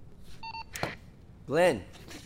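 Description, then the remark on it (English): A single short electronic phone keypad beep, fairly soft, followed by a sharp click and then a brief burst of someone's voice over quiet background noise. “Who are you calling?”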